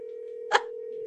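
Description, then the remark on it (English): A steady phone tone hums throughout, interrupted once by a brief, bright click-like burst midway, like a single key press or connection sound during a call being placed. “I'm actually just going to call”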